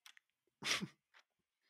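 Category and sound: human body sound, person yawning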